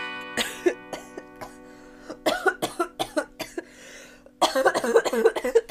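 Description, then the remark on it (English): A series of harsh, hacking coughs after smoking a bong comes in rapid bursts, growing heavier and more congested toward the end, with a steady low hum underneath. “Hold please, our narrator needs a cough break.”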